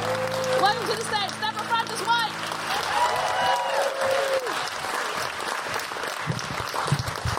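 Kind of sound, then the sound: crowd, audience cheering and applause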